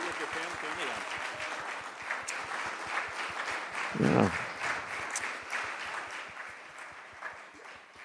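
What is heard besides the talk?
audience applause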